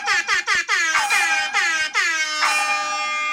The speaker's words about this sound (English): That is a terrible air horn